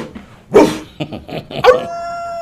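A dog lets out a few sharp barks in quick succession, then slides into a long, high, steady whimpering whine that holds to the end. No one speaks.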